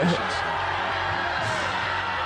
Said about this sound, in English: Dang. They're booing. They hate Chicken Little.